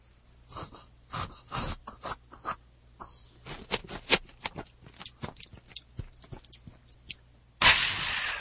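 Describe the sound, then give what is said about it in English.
Close-up chewing with wet, crunchy bites repeating in an irregular rhythm, loud and right at the microphone, ending in a brief burst of rustling noise. “I think you need to put the microphone in your mouth while you chew, or at least closer to your mouth.”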